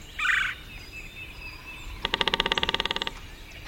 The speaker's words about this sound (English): It's morning on the bayou. Cypress trees draped with Spanish moss rise from still, dark water. A red-bellied woodpecker calls and then drums on an ancient snag.